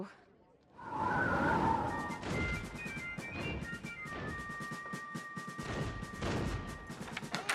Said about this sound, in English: Since Washington's retreat from Long Island weeks ago, General Howe's done nothing. Until today. That cannon fire has been going on all day.